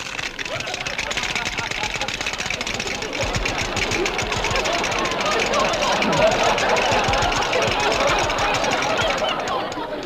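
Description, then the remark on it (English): Cream is poured onto a great big bowl of breakfast cereal, which crackles loudly, a dense, steady rush of rapid snapping and popping that runs unbroken for about ten seconds, with no voices over it. “They've stopped crackling.”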